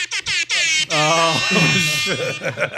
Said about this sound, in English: We need the sound drop. That's the reggae horn right there.